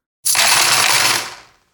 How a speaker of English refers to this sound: Coins! Coins!